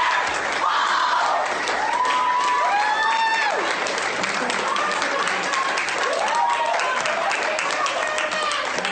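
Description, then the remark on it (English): A crowd of parents breaks into sustained applause, an ovation with loud cheers and whoops, dense clapping throughout, a few voices shouting out over the crowd. “After this woman gets with her crazy rant, the other white trash, dumbass, chud fuck teach, not teachers, parents give her an ovation for her screaming, ranting nonsense.”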